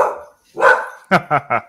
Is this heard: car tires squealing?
no